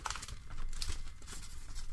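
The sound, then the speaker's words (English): Continuous crinkling and crackling of a piece of paper being crumpled, a dense stream of sharp rustles lasting the whole two seconds with no one speaking. “As we crumble this piece of paper in your ear.”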